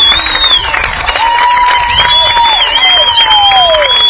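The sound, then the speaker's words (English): Hornet fans at a Game 3 baseball game applaud steadily for pitcher Reed Smith as he leaves after 6 2/3 innings, a dense continuous clatter of clapping with cheers mixed in, while several long, wavering high whistles ring out over the noise. “Huge applause here for Reed Smith.”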